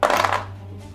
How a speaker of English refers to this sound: See, when I roll the other dice a bunch, you decide to behave. That makes it a 22 to hit.